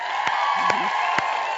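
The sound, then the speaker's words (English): A crowd of moms in Austin cheers and whoops together in a steady, lively wash of voices, with a few sharp claps popping through. “we just want to tell you that there's a group of moms in Austin cheering you on.”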